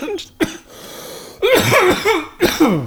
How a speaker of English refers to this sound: Damn. I'm waiting for that high-pitched cough. Oh, it was almost there. Yeah, not yet. Not yet. Wait till I get a fat rip. He gets these squeaky little coughs.